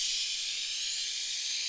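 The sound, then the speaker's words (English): A voice imitates the hiss of a sliding door in a movie: one steady, breathy, high-pitched hiss that holds evenly for under two seconds, with no talking around it. “It's just the worst part about that to me is the door opens, like, psh, all right, let's go. Close the door. Psh.”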